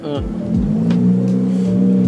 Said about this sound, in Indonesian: Ini Agia balap. Nah, ada mobil cuy Agia balap.